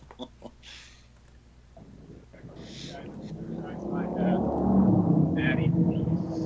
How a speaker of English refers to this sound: Just standing on the street. It's the wind, bro. It's the wind. Like fucking cars rushing past you. I'm on location, man.